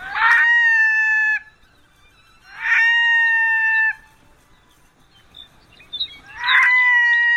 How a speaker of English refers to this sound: The red-throated loon. A bird with a very red throat when seen in summer up on its Arctic breeding grounds.